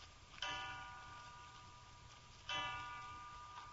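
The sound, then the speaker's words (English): A clock strikes three o'clock with slow, resonant chimes, two strokes about two seconds apart, each ringing out and fading over a quiet, faintly humming background. No one speaks. “3 o'clock.”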